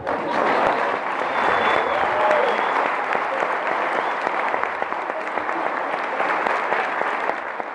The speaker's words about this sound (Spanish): Deseen un aplauso.